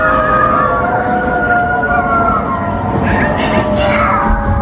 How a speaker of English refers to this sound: Are people standing out in the streets howling? Like animals?